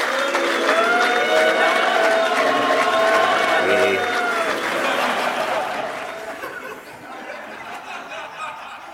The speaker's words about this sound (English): So I am flattered and honored to be here and to receive your generous applause.